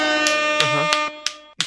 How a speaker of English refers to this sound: Yeah. Where's that applause button?